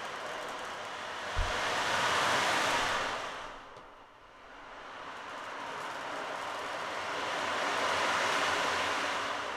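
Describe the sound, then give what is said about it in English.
An ocean drum, a handheld instrument, makes a steady, hissing rush like ocean waves, swelling, easing off briefly, then building again in a slow surge. A faint low thump sounds near the start, and nobody speaks. “Sounds like the ocean.”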